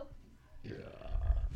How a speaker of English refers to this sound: I was trying to burp at the same time as saying pick the nose, and it just didn't happen.